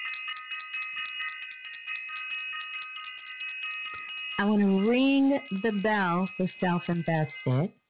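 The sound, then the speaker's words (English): A bell rings out in a long, steady, sustained tone with several clear overtones for about four seconds, then a person starts talking over its fading hum. “First, I want to ring the bell for self-invested.”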